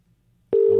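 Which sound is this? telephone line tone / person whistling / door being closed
telephone line tone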